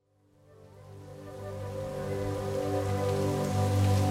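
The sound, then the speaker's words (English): Heavy rain suddenly falls out of a clear blue sky, swelling over a couple of seconds into a dense, continuous downpour hiss, with a low steady hum beneath it and no voices. “Out of clear blue sky, a downpour.”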